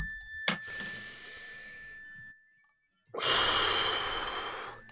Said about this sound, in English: Take a deep breath when you hear this bell. Ready?